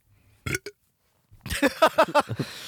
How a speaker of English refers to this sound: You didn't even, like, the burp didn't look like it came out of your mouth. It looked like it was an added-in sound effect because it was so casual.